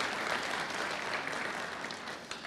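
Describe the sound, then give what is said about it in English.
A crowd applauds steadily, a dense, even wash of many hands clapping at once, sustained at moderate loudness throughout with no voices breaking through. “Let's give them all a round of applause.”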